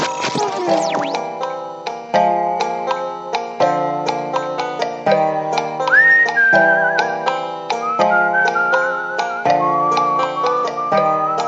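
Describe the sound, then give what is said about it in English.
A person whistles a tune over a steady instrumental accompaniment of rhythmic chords; the clear whistled melody enters partway through and rides above the music, with no one speaking. “I just kind of figure on whistling out the last few minutes.”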